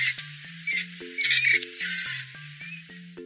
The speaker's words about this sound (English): Mice, they squeak.